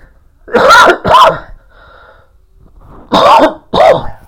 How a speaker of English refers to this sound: I apologize for the cough. I'm fighting a cold.